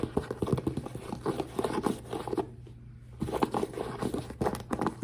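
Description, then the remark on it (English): Handling noises: a pair of zip-up walking shoes being shifted and tapped in quick irregular bursts, with soft rustling and knocks, a brief lull midway, then more tapping and shuffling. “So first I wanna show you the shoes because they're the most important part.”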